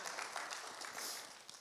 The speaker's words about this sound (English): Come on, can we give our teenagers a round of applause?